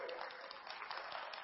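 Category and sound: crowd, audience clapping and shouting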